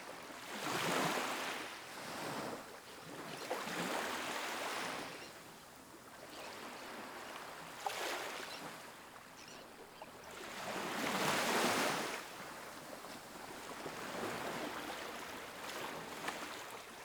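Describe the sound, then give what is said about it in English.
Ocean waves wash steadily onto a sandy shore, broad hissing surges swelling and receding every few seconds in a slow, even rhythm, moderately loud with no voices. “The rhythmic sound of the waves becomes your guide, drawing you closer to the water's edge.”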